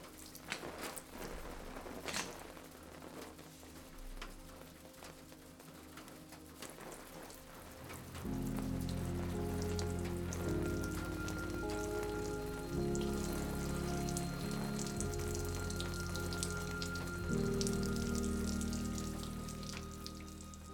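Water leaking in from a roof drips and splashes steadily into puddles on the floor, scattered drops pattering for the whole stretch, with no talking; after several seconds a deep, sustained droning music swells in beneath the dripping.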